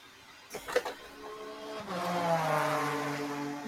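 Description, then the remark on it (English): A few sharp clunks, then a pickup truck engine turns over and settles into a steady, droning run, with a rough, buzzing hum and no talking. “And this is what my truck sounds like.”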